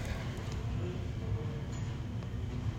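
A train rolls past with a steady, heavy low rumble and clatter that holds at an even level throughout, with no voices.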